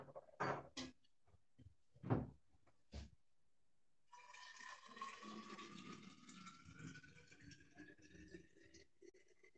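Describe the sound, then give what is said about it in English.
A few sharp knocks and clatters, then a tap runs steadily into a water bottle, the pitch rising gradually as the bottle fills, with no one talking. “I'm coming back. One minute, I forgot to fill my water bottle.”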